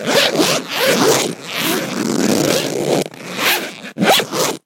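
A zipper is pulled open in several loud rasping strokes: a long continuous run followed by a few shorter quick pulls with brief pauses between them.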